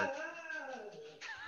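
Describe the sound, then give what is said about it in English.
A dog named Hobbs whimpers in a drawn-out, high-pitched whine that wavers in pitch, then gives a sharper yelping cry near the end, with no talking. “It's a dog.”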